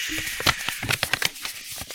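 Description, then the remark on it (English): Crackly, fake paper shuffling in a quick series of irregular rustles and crinkles lasting about two seconds, with no clear speech over it. “Just hear the fake paper shuffling.”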